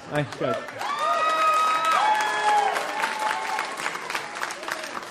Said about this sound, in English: when people stand, I want us to clap and cheer and celebrate